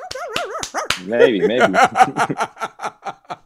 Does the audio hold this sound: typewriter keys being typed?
no